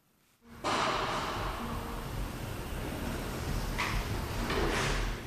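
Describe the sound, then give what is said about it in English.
Heavy sliding metal jail doors roll along their track, a loud grinding rumble that starts abruptly after a brief silence and continues steadily for several seconds. “We wait to enter through heavy sliding metal doors.”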